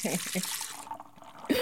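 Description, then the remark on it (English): Water runs steadily from a tap with a bright, hissing rush that fades partway through, while voices talk over it at the start and again near the end. “Where's all that water coming from?”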